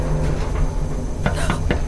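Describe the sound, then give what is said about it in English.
Three quick, sharp knocks on the wall of a moving elevator, the last two close together, sounding slightly metallic over a steady low mechanical hum. No one speaks. “Who could be knocking on the walls?”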